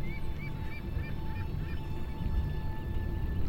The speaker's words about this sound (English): In the air are hundreds and hundreds of birds, soaring, calling, landing and launching again, in swirling and dizzy eddies.